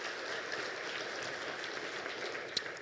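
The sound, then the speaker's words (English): Steady, dense clapping from an audience applauding the seven panelists on stage, a continuous crackling wash of many hands with no talking, holding an even level for a few seconds with one slightly sharper clap near the end. “So just one more time, can we please give another round of applause to our panelists?”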